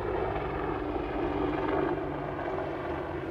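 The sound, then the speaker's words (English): A helicopter gunship drones steadily overhead, its loud, continuous rotor and engine rumble filling the whole stretch without pause. No one speaks. “And we have the joy of a helicopter that continues to fly over us.”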